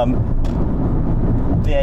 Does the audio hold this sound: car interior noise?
yes